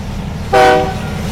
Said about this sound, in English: The earth shook, the train whistle bellowed, and a faint whiff of diesel pricked his nostrils. Matt's heart began to pound. He turned his back, holding his ears while the engine rushed by.